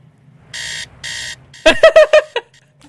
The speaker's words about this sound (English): All right, you know what? Literally, I looked up TiVo sound. Fuck you, TiVo.